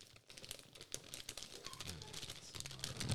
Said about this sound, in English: Ooh. Trying to get it out of the box.